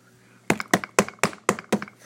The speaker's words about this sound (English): Well, as he was reading, he suddenly heard something. Oh, someone's knocking at my door.